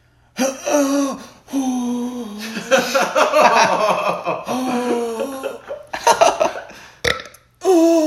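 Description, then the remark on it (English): A voice imitates a man in a toilet stall belching mid poop, a series of long, drawn-out belches, several croaking bursts in a row with short breaths between, fairly loud with no other talking. “He even like belches like mid poop.”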